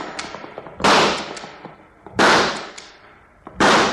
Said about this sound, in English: You got yourself 2 gobblers. You call that nice shooting, Judge? Shot 4 times and only got 2 birds. Well, that's what a fella gets for spending too much time practicing law and not enough time practicing with a Winchester.